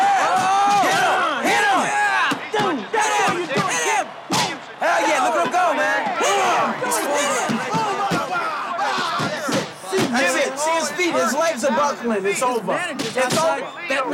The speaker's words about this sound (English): I love that they added the sound effects to the boxing match while they're watching on the satellite dish in the RV.